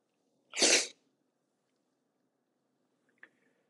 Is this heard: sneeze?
yes